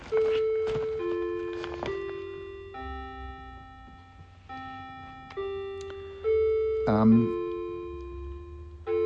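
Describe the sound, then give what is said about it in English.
A clock chimes several times in a slow, uneven sequence, each ringing bell tone lingering and overlapping the next, with a low hum underneath throughout. “Wait for another seven chimes of the clock.”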